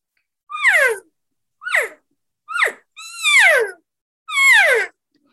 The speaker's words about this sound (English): you know, normal mews and chirps like that, that's part of everyday communication. That's like you and I sitting down having a conversation right now.